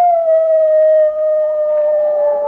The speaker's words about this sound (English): Wolves.